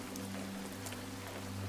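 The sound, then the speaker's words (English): Steady, heavy rain patters against dozens of window panes looking out onto cottages and shops, a soft continuous hiss with scattered sharper drop taps, over a faint low hum and no voices. “The steady patter of the raindrops provides a serene backdrop to your literary exploration as you make your way to the back parlor.”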